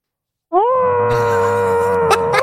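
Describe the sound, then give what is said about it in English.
A person lets out one long, loud scream into a blanket or robe stuffed in the mouth, muffled. It starts abruptly after a brief silence and holds steady for about two seconds before cracking at the end. “Just stuff your mouth with something and scream right now as loud as you can.”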